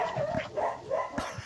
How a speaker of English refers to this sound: I hear your dogs and my cat. They're excited. My cat wanting to come in and your dogs, yeah.